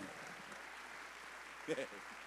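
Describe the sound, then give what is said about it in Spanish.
Steady crowd applause given to Jesus, a soft continuous patter from many hands, with brief bursts of voices rising over it. “Dele un fuerte aplauso a Jesús.”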